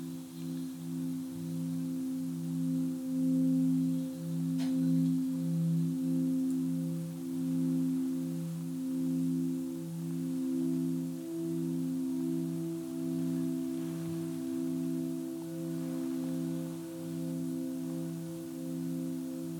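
Low, steady singing bowl tones played for meditation hum without pause, their layered overtones slowly pulsing and wavering as they beat against each other. No voices, just the sustained resonant drone.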